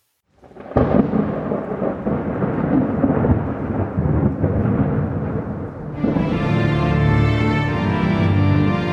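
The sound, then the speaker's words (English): Thunder rumbles heavily through a storm, a dense, continuous roar with rain-like hiss. About two-thirds through, a steady tonal drone swells in beneath it. No one speaks. “from the lightning in the sky that passed me flying by, from the thunder and the storm and the cloud that took the form of a demon in my view.”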